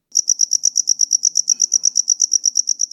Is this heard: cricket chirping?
yes